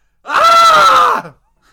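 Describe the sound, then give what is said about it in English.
A single loud, sustained human scream lasting about a second, harsh and strained with a steady pitch, then cutting off into silence. “Fucking screaming.”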